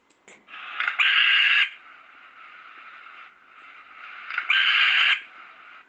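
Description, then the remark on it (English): Two long, harsh hissing screeches from an African grass owl, each rising in intensity and lasting over a second, separated by a quieter raspy hiss, with no talking. “They're very screeching call, very, very similar to the barn owl. And it's something like this.”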